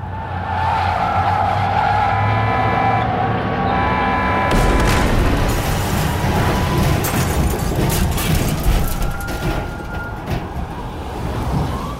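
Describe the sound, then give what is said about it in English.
A bus driving at 7 a.m. hits a patch of black ice and skids off the road with a droning, squealing whine, then a sudden loud crash gives way to sustained grinding, scraping and rumbling debris noise as it violently flips until it slams the ground. No voices. “bus hits a patch of black ice, skids off the road, and violently flips until it finally slams the ground.”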